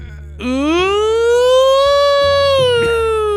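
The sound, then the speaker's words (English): A basement door creaks open with one long, loud, siren-like squeal that rises in pitch, holds steady for about three seconds, then dips slightly, with a low hum underneath. “Why is it so loud? It's like a French alarm.”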